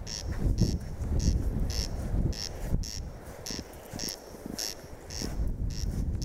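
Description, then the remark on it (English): A corncrake calls over and over in harsh, rasping double notes at a steady rhythm, heard through heavy wind rumble and rustling noise, recorded on Owey Island off Donegal. “Here, do you want to hear some corncrake? This is some really badly recorded calling that I took up on Owy Island off Donegal some years ago.”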